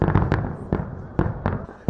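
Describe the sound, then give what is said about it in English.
Aerial fireworks from a regular fireworks display burst in a rapid, irregular series of sharp booms and crackles, several overlapping in quick succession, loud, with no voices present. “As the regular fireworks ended, everyone took their places, including Christine.”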